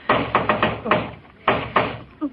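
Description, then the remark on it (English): Mr. Scrooge knocking firmly on the Cratchits' door in an audio drama: a quick run of several raps, a short pause, then another couple of knocks. “Well, open the door and see what he wants, Dag Cratchit.”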